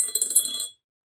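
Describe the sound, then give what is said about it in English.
A die rattles and tumbles across a hard tabletop, a quick burst of bright, clicky knocks lasting under a second before it settles into silence. No one speaks. “I roll a die because there's no way a sheriff's department van isn't bugged.”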